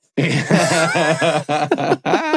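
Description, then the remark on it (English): A long, drawn-out belch into a microphone after drinking A&Ws, with a low, rumbling, voiced tone that wavers and breaks into a few short bursts before trailing off. It's loud and comes alone, with no talking. “Sorry, I keep belching into this microphone, man.”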